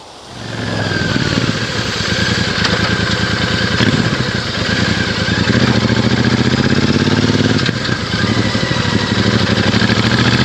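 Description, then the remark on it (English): A Royal Enfield Super Meteor 650 motorcycle engine runs steadily, a loud continuous rumble with slight rises in pitch as the throttle shifts, with no one talking. “Yeah, so overall, the Royal Enfield Super Meteor 650. Fantastic machine. Very, very nice indeed.”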